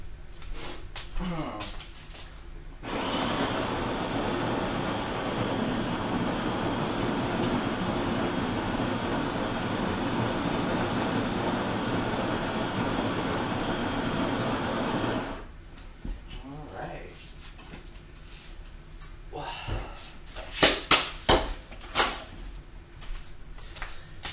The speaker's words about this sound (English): I'm gonna grind some coffee here. I'm gonna carry you a little bit further away from the coffee grinder so it's not blaring in your ears.